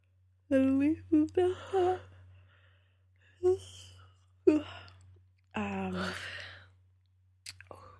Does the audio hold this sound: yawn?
yes